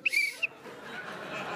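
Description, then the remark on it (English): A coach's whistle gives one short, shrill blast lasting about half a second, loud, followed by faint background noise with no talking. “Oh, wait, I have a whistle, too.”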